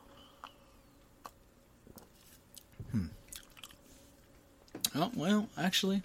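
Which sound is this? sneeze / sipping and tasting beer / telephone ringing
sipping and tasting beer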